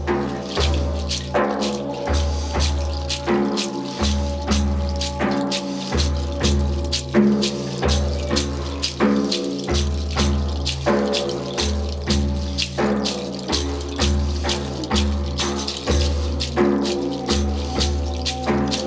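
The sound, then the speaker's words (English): Steady flowing water splashes and trickles continuously, with a rhythmic low pulsing beneath it and no voices. “Allow your spine to be fluid like this water.”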